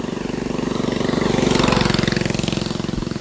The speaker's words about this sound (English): That is not a street-legal motorbike. It looked like a... I don't know what it looked like. It looked like a scooter with super fat, knobby tires and no license plate.